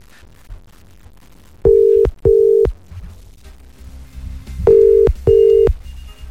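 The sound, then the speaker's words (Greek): A telephone ringback tone sounds in two pairs of steady electronic beeps, each double burst followed by a pause, loud and clear over a faint low background hum. “Βγάλε το τηλέφωνο που χτυπάει να δούμε τι θέλει ο άνθρωπος.”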